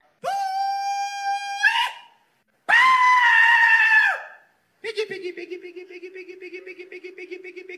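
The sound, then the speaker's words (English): Three loud, drawn-out shouted hog calls from pig hunters calling in pigs to hunt them, the first two high and piercing, the last lower and wavering, each held for over a second with short gaps between. “I don't like this because this is how pig hunters, I guess, try to call in their pigs to hunt them.”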